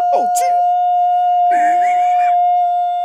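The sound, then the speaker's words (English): A person imitates a wolf howl, holding one loud, steady, siren-like tone for about three seconds while other brief vocal sounds rise and fall over it. “Can I get a wolf? A wolf sound?”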